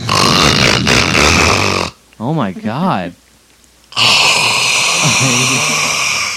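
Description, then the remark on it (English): A voice imitates a man's snoring with two short, rough, pig-like snorts that rise and fall in pitch, set between loud stretches of noisy talking. “You wouldn't imagine how he snores.”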